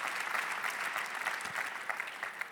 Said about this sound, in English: Come on, let's clap to him one more time.